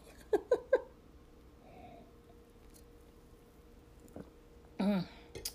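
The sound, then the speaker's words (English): Quiet sips from a glass of rosé wine: three quick wet slurping sounds, then a pause, a faint clink or swallow, and a short satisfied voiced exhale at the end. “So I'm going to take a sip. My mouth's getting dry.”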